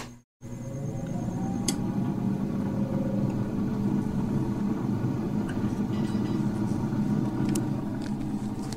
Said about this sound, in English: And as you can hear, the air fryer is running and it is heating up or frying my food.